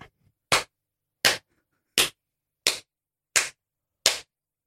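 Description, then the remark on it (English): Six sharp, loud slaps on a face land one after another at a steady, unhurried pace, each a crisp smack followed by a brief silence, with no voices in between. “I'd be like, right, come on, 10 slaps right now.”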